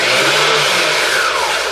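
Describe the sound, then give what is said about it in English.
An electric blender runs loudly and continuously, a dense whirring motor roar with a faint high whine that slides gradually in pitch. No one speaks over it. “So here, if we really appreciate what's going on, if we stop and took the time to appreciate the fact, this is fantastic to have a blender.”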